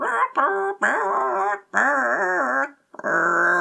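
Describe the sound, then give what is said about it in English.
A person imitates a chicken with four strained, warbling vocal squawks, each about half a second to a second long with wavering pitch, loud and without other talk. “Good chicken impression.”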